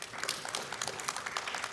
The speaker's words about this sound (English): For the New Testament, the New Testament alone, this is not the Old Testament, there were 24,000 plus manuscripts written. That's applause worthy.